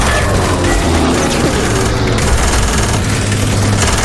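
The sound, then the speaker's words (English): Enemy fighter gunfire rattles against the bomber Apple, a dense, continuous clatter of rapid impacts over the heavy, droning roar of its Merlin engines that stays loud throughout. “Apple shuddered once again as the enemy fighters struck the plane.”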